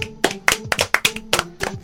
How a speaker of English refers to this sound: Everybody clap.